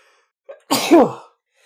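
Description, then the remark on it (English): A single loud human sneeze, with a brief sharp intake of breath just before the explosive burst, then silence. “bear with me, I'm going to sneeze.”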